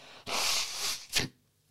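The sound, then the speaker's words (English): Someone with a pollen allergy and a runny nose blows their nose: a long, hissing, breathy blast lasting most of a second, then a shorter, sharper honk right after. No voices. “Sorry, I got to blow my nose here for a second.”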